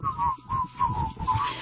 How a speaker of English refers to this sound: Wait, here comes the whistling. It's hard not to whistle along. Is that whistling or a keyboard whistling?